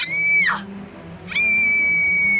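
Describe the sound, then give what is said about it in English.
A loud, high-pitched yell from the character Screenalina as she and Screener fall down into the cave of swallows. It holds a long note, slides downward and breaks off, then bursts back in and stays steady and shrill until the end. “Yelled out Screenalina as she grabbed onto Screener's sweater.”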